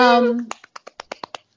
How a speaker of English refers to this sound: That was a clap. That was a clap because you guys can't see me.